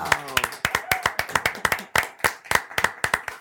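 An audience breaks into brisk, loud applause to welcome a guest, sharp claps piling up in a quick, uneven patter for a few seconds, with a short vocal exclamation near the start.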